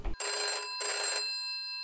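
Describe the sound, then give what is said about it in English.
A telephone rings twice in quick succession as a call is placed, each short bright electronic trill clear, with a brief ringing tail fading after the second ring. No one speaks. “Let's get him on the phone.”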